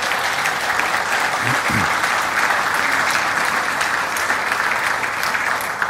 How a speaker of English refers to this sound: So kudos to you, thank you, and well done. Maybe we can have an applause for green team.